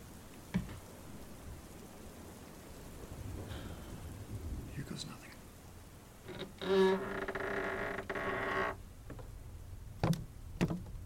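A creaky staircase gives a long, groaning wooden creak under weight that rises midway, with a few soft thuds around it, all over a steady rainy, stormy background hiss.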